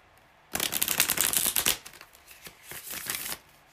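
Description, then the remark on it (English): A Rider-Waite-Smith tarot deck being shuffled: a dense, fast riffle of crisp papery flicks, a brief pause, then a second, softer burst of shuffling. No one speaks. “And I'm using, for anybody watching the video, I'm using this Rider-Waite-Smith tarot deck. And I'm gonna go start shuffling the cards.”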